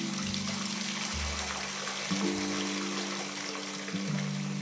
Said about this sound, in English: He reached the gate, twisted the stiff and squeaking tap, and stood waiting for the can to fill, leaning heavily on the fence post.